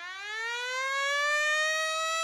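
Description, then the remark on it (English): A hockey period-ending buzzer blares as one long, loud, harmonically rich tone, its pitch sliding gently upward as it holds steady for about two seconds with no voices over it. “And there's the buzzer ending our period.”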